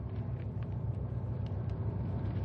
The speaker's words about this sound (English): Pull alongside Pat's car, pal.